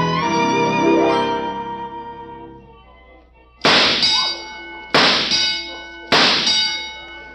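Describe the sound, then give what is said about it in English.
Three sharp metallic clangs of shooting gallery ducks being knocked over, spaced about a second apart, each ringing out and fading, following a sustained ringing metallic tone; 18 of 20 ducks were knocked over. “Well, I knocked over 18 out of 20 ducks.”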